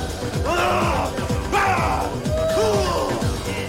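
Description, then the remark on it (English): In a film scene, Nick Cage screams and yells in several loud, strained bursts while jumping to fast, pounding techno music that thumps steadily throughout and beating another man. “Nick Cage reveals that his character's father has died by screaming and jumping to techno music and beating another man.”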